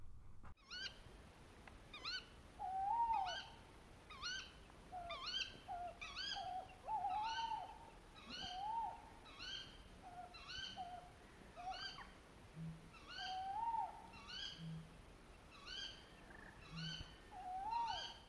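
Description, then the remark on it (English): A tawny owl calls over and over in a steady, rapid series of short, hooting notes, clear, with no talking and only faint background noise. “They make the twit-twoo sound, don't they?”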